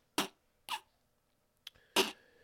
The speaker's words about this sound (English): So, let's just say that was half a laugh and half a cough for those of you that don't know.